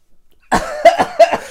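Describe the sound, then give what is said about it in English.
A sudden fit of coughing after spitting out a mouthful of water, four or five harsh, rasping bursts in quick succession with a slightly voiced, throaty edge, loud and on its own with no talking. “Yeah, now we're both wet from my spit.”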